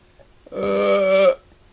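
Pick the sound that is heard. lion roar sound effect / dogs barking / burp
burp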